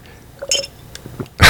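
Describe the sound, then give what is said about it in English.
A dog makes brief noises: a short, high whimpering yip, a few soft snuffles, then a sudden louder huff at the end, with no talking. “And like the dog, I will not edit that out.”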